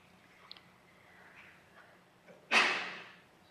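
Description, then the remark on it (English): A single loud sneeze bursts out during a moment of silent reflection and prayer in a service, a sudden sharp explosive sound that fades quickly within about half a second. No one speaks. “Bless you.”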